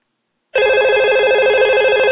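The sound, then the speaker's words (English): A telephone rings on the call-in line of the Diva Talk Radio show with a steady, bright electronic warble, starting abruptly after a brief silence and continuing loud for a couple of seconds with no one speaking. “I'm screwing up the lines because everyone's excited about the Joydex phone.”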